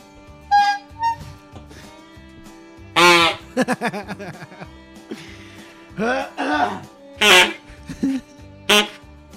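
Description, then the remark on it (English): Backyard chickens cluck and squawk in loud bursts, with a rapid run of short clucks in the middle and sharper, harsher calls breaking out every second or two. “What do you say we take a trip down to the old backyard chickens?”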